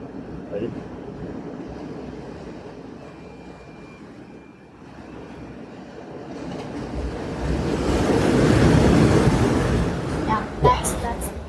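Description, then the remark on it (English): Ocean waves wash ashore in a steady rushing roar that swells into a louder breaking surge near the end, with some wind buffeting the microphone and faint voices. “Okay, we're going outside so you guys can hear the waves.”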